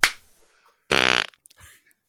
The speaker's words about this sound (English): I was trying to time it with your clap, sorry.